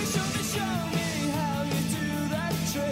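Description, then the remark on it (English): A rock song plays at a steady, loud level, with full-band instruments and a singer's voice carrying a melody over the dense, driving mix. “I'm going to let these guys rock out for a bit”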